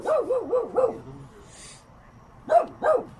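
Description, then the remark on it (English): A dog barks in two bursts, four quick sharp barks in a row, a short pause, then two more. Fairly loud, with nothing else competing. “Fucking dog.”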